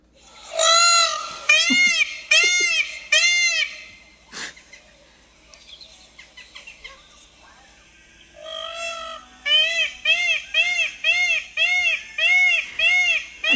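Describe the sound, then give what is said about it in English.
A recorded bird call played from a video: loud harsh, nasal, rising-falling notes, four in a row, a brief pause with faint rustling, then a faster run of about seven more. “We were listening to that on a YouTube video, and it just paused on like a bird with its mouth wide open”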